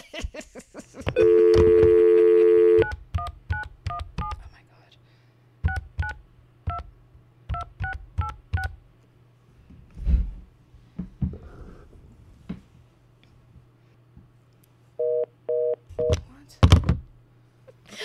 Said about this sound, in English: I mean, why don't we play this one isolated clip of you trying to make the phone call for today's interview?